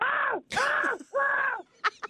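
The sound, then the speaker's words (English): A person on the Country 104 radio show imitates a crow with three loud, harsh, drawn-out caws in quick succession, each with a raspy, arching tone, followed by a couple of short, sharp breathy bursts. “Can we get your best crow?”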